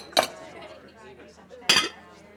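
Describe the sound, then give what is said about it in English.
Two sharp ceramic clunks, about a second and a half apart, as steaming bowls of stew, seven in all, are set down on a table in an alehouse, with a faint murmur of background noise between them. “It was then the proprietor of the alehouse returned from the kitchen with 7 steaming bowls of stew and placed them before her 7 hungry patrons.”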